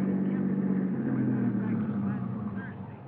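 A car engine hums in a low, steady drone as the vehicle winds slowly up the driveway to the DeSalle mansion overlooking the ocean at 7:30 as the fog lifts, the rumble easing off slightly toward the end.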